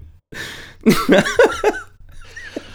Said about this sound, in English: Loud coughing.